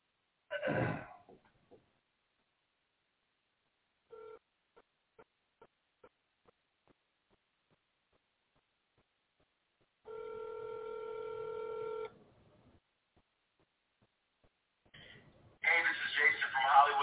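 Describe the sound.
A phone call is placed: a series of short, quiet dialing beeps, then a steady ringing tone lasting about two seconds, followed by a voice starting to speak on the line.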